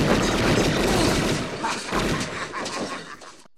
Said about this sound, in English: And all of a sudden I heard gunshots.